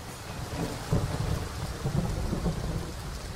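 Steady rain hisses across the whole stretch while low, rolling thunder rumbles beneath it, swelling slightly near the middle. No voices, just a continuous storm.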